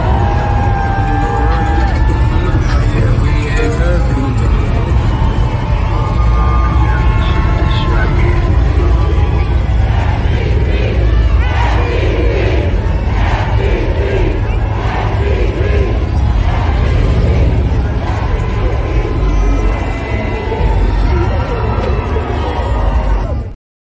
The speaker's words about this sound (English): We watched a little bit of the parade. Here's just a little, let me see if I can find it, just a little bit of the intro